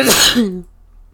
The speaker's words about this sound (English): I just sneezed.